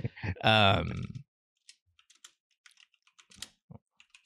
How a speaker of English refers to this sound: I just see you typing.